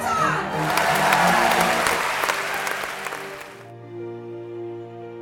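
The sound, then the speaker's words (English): A crowd roars and cheers with dense applause and scattered sharp claps for about three seconds, then cuts off abruptly, leaving a sustained musical tone that had been rising underneath. “She roars, can I hear you roar one more time?”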